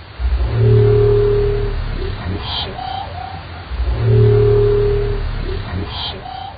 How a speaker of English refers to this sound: Experts think it's a new type of dwarf minke whale call we've never heard before.